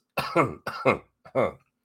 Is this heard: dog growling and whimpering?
no